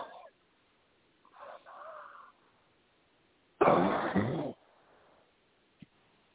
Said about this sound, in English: Cough, honey. Cough. Cough from your gut, not your throat.